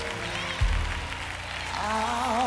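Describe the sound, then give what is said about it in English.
A crowd clapping hands in a steady, dense wash of applause, with a low thump early on and sustained musical tones rising underneath toward the end. “Come on, I need you to clap your hands as they come.”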